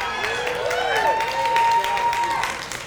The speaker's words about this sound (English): See, some of them know they are clapping for us.